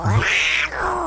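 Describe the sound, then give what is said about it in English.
A person's voice imitates a cat's drawn-out, yowling in-heat meow: one loud, strained wail that rises and bends in pitch, delivered alone. “Is our in heat meow, and we use this when we need a little bit more special kitten attention, if you know what I mean.”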